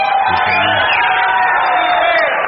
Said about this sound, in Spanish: Y aplauden.